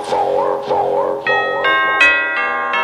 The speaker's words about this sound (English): Ding dong. Ding dong, ding dong, ding dong.